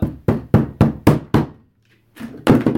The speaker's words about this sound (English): You don't have to slam the door, you know.